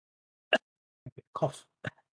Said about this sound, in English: Cough.